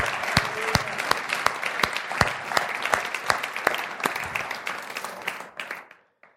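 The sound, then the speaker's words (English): A church audience breaks into steady applause to honor God and thank the Lord for the church's ministry, many hands clapping in a dense, lively patter with a few sharp individual claps standing out, before it thins and dies away at the end. “Can we just maybe even raise up a clap together to honor God for what he does with us?”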